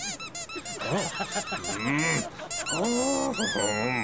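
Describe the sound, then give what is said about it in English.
A squeak toy squeezed over and over, first in quick short honking squeaks, then in longer drawn-out wheezy squeals, loud with no talking. “I have squeak toy.”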